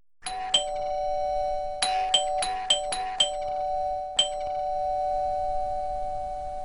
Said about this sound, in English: All right, I think I hear the doorbell.